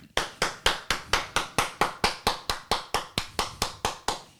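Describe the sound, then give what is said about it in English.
A steady run of sharp hand claps, about seventeen in a quick even rhythm, made by a man trying to catch a gnat in his hand. Crisp, with no talking. “catches the gnat in his hand”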